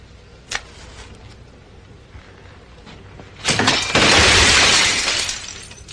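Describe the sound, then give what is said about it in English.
A brief sharp crack, then a loud burst of a glass cabinet full of lab equipment shattering, glass spraying and tinkling for about two seconds before fading. No one speaks. “Slowly walks over, leans against a glass cabinet full of lab stuff.”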